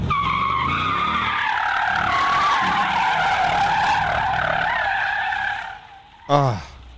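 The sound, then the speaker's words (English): A heavy Jeep's tires squeal loudly and continuously for several seconds in a long, high-pitched skid, then cut off abruptly, followed by a brief engine revving burst. “That Jeep was a heavy, that was a lot of heavy squealing.”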